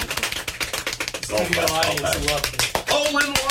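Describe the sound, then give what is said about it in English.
A crowd claps in a quick, uneven patter of sharp hand claps that carries on throughout, with voices calling out and talking over the clapping for much of it. “We all have claps for yourselves.”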